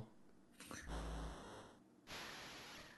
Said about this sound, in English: Well, listen to that Darth Vader breathing.